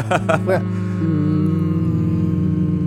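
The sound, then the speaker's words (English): Several voices hum together in unison, holding one steady, sustained tone after a few brief vocal bursts at the start, their blended drone continuing evenly to the end. “We should all hum to, like, end let's the show.”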